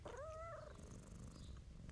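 A cat purrs steadily as a woman strokes its fur and rubs its ears, a low continuous rumble throughout, opening with a short chirping trill before settling into the soft, even purr.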